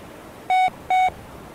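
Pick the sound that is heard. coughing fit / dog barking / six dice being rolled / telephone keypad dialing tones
telephone keypad dialing tones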